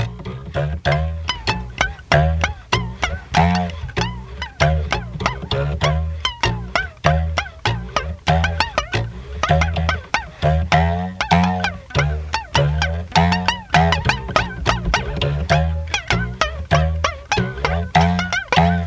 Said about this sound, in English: And then we have the little mice playing a little tune on rubber bands and paper clips. Here's another one from the mice. Here we go, guys. Let's hear it.